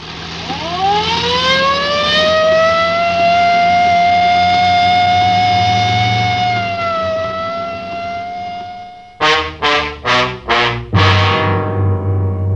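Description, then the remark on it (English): A police car siren, switched on while driving in the rain, winds up into a long, loud, steady wail, then breaks into four quick chopped bursts before rising again over a low engine rumble. “Well, I better use the light and siren”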